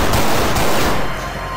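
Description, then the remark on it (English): Loud, dense bursts of heavy weapon fire roar across a broad noisy spectrum, sustained for over a second before thinning slightly, like a punchy video game gun effect with no voices. “We produced nearly 3,000 sound effects, in particular the sounds of some mighty powerful weapons.”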